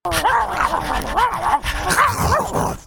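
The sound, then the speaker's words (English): Several fenced-in dogs yip, bark and whimper, their high whining cries overlapping in quick succession throughout, with a noisy, busy background beneath the steady chorus. “Okay, guys, now that we got that out of the way, should we begin our weekly dog meeting?”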